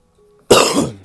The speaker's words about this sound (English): I might cut that cough out, though, because I don't know about that.